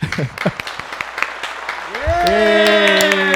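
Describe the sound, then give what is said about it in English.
A brief burst of scattered clapping, like a canned applause effect, runs for about two seconds before sustained, rising tonal sounds swell in and hold steady at a louder level. “Post-production, I'll probably put like some claps in the background, some generic background, and I'll put the game show.”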